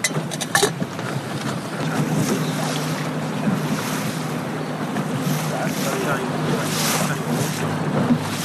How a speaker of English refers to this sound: We have blessed the half-deckers and the larger boats, which are still under 15 metres, and we now move along the punts of the island, which are the smaller boats, and we are also moving among the pleasure craft which sails here from the island.